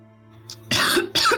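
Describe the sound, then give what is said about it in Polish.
Two sharp, harsh coughs in quick succession, loud, caused by smoke in the lungs, preceded by a faint breath over a low steady hum. “Ty kaszesz, on kaszle.”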